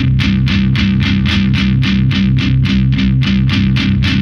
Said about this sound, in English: See, it's more like a filter sweep